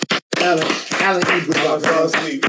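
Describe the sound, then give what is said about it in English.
A short burst of people clapping after a five-second moment of silence, quick sharp claps blending into a steady patter, with voices talking and calling out over the applause throughout. “Clap it up, bro.”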